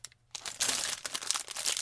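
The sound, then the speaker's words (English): A package is torn open: after a brief quiet moment, a loud burst of crinkling, ripping paper and plastic rustles on steadily for about a second and a half, with no talking. “Oh, and I'd better open my package.”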